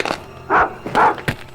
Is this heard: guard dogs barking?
yes